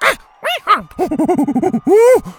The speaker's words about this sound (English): And Tuku, dressed in a Bakuza dino skin skirt, made one last attempt at stealing his hat. Bo swatted his hand away and the monkey howled angrily.